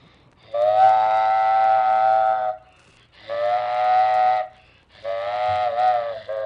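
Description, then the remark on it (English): A child imitates a freight train whistle: three long, loud blasts, each a steady, chord-like tone lasting a second or two, separated by short pauses, with no talking. “Freight train.”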